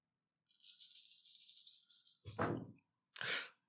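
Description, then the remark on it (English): A handful of six dice rattles steadily in a cup or hand for about two seconds, then clatters out onto a table, followed by a brief second clatter. Fairly loud, with no talking. “So I guess I'm just rolling 6 dice.”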